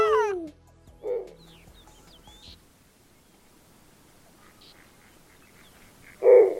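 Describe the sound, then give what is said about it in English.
A snowy owl gives a few harsh, nasal calls, a descending burst at the start, then short barks spaced by quiet stretches, ending with one louder call. “This is the snowy owl. This is a call from him.”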